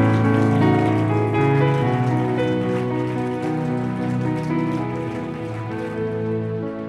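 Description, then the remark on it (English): A church audience claps steadily for several seconds as a clap offering to Jesus, a dense, loud patter of many hands blending together over sustained musical tones underneath. “If you believe that, put your hands together. Give a clap offering to Jesus.”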